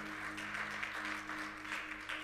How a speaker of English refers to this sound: I mean, we have an online family. Could we just give them a round of applause?